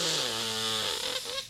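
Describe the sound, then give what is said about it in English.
Someone imitates an aunt's big, exaggerated sniff during a hug at a family party: one long, loud, breathy inhale lasting about a second and a half, with a low buzzing voiced tone running under the hiss. “And my aunt gives me a hug, and she sniffs me, and she, it's like one of those, like...”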